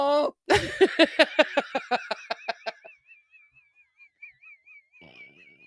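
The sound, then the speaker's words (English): A donkey brays loudly, a rapid series of harsh, rhythmic honking gasps that gradually weaken and fade, followed by a thin, wavering high-pitched tone and a brief rustle. “Is that the sound a donkey makes?”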